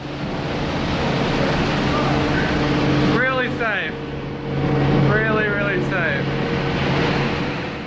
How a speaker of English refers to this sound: He sent a video of like the engine room taking on water.